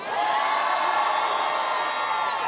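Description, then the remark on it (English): A large crowd at a Joe Biden rally in Virginia cheers and shouts in a steady, sustained roar that holds at full loudness for the whole stretch, with no single voice standing out. “The crowds, listen to the crowd's reaction there.”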